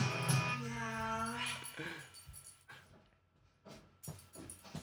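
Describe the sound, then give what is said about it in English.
A dog lets out a drawn-out, high-pitched whimpering whine, followed by quieter scattered noises and breathy sounds. “that hurts to hear. Yeah, the silly rabbit says. It's hurting the dog.”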